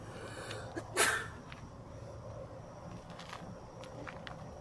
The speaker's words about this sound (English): Bless you.